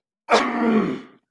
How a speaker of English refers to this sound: my apologies in the cough. I've been doing that for like 2 weeks now.